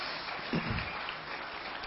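An audience claps together in a steady, dense wash of applause that holds at an even level for the whole stretch, with a faint murmur of voices underneath.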